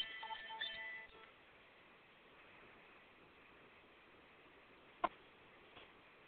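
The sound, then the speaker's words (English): A phone's electronic ringtone chimes briefly at the start, a short melodic burst that cuts off within a second, leaving faint steady hiss and one sharp click. “I didn't realize it was a phone turned on.”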